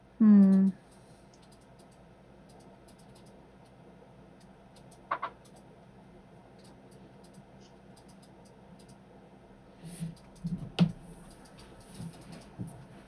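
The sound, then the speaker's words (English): Faint, scattered tapping of several people typing on computer keyboards, irregular clicks that cluster in the last few seconds, after a short loud tonal burst at the very start. Otherwise quiet. “Several people are typing.”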